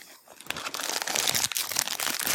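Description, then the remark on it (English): Continuous crinkling and rustling of a foil pack inside a toy box being handled and opened, with sharp crackly bursts that build after a quiet start. No one speaks. “Can you hear the rustling? Inside there is a foil pack.”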